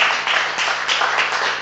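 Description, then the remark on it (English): A church audience claps together, a dense, steady patter of many hands filling the whole moment at a fairly loud, even level, with no voices standing out. “That's worth a clap.”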